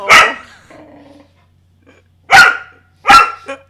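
An unhappy dog, left with its owner home alone, barks three times with loud, sharp barks spaced a second or so apart, a low growly tail after the first and a short yip at the end.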